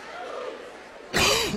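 Over a low murmur of crowd noise at a basketball game, a single loud, harsh cough from the game commentator bursts out near the end, rough and raspy with a brief strained, voiced edge.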